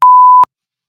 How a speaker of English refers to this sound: I just wanted to use the beep button.